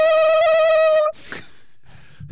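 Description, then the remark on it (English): A voice imitates a cast saw, the small vibrating saw used to cut casts off, with a loud, steady, high-pitched buzz held for about a second, wavering slightly before cutting off abruptly into quieter background noise. “Yeah, that or the little saw that they use oh, for yeah. cutting casts off.”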